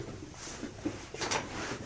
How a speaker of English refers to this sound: Chair adjusted here. Sorry about that.